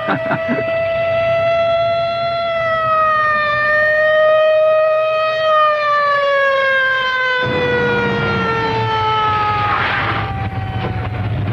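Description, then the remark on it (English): A loud police car siren wails steadily at night as the car hurtles along, its tone slowly rising and then sinking, with a low engine rumble underneath and no voices. “It's really a rotten night to be hurtling around in a police car.”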